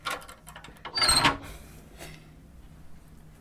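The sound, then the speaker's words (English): A heavy strong room door in the RDS archive opens: faint mechanical rattling, then a loud scraping clunk of the latch and hinges, followed by a softer thud and quiet settling. No one speaks. “So this is the door to the strong room.”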